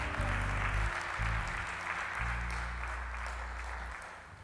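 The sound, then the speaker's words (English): An audience claps hands in praise to God in steady, dense applause throughout, easing slightly toward the end, with low sustained instrumental chords sounding underneath. “Come on and give God a hand clap of praise for that, if you don't mind.”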